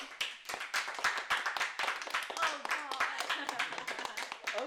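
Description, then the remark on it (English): Everyone in the room applauds during an applause break, dense overlapping hand claps forming a steady, loud patter throughout, with some voices and whoops mixed in underneath. “I mean, are we going to take an applause break?”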